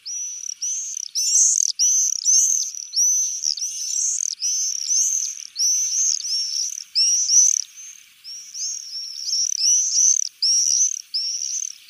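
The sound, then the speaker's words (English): Common swifts calling, a shrill, buzzy screaming repeated in quick, overlapping bursts that run almost without pause throughout, fairly loud, with no voices. “that's the common swift.”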